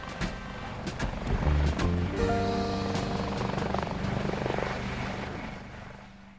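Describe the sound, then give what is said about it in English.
A blue helicopter's engine whines up through rising pitched tones with a loud mechanical rumble, then settles into a steady drone that slowly fades. “Next to him, a pair of smart-looking German investors in sunglasses smiled for the cameras, prepared to follow Baldor inside the helicopter.”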